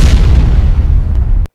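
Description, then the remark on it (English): A loud explosion with a deep rumbling roar that fills the whole clip, its low boom sustained before cutting off abruptly at the end. No voices. “I'm giving it a house explosion, baby. All the way up.”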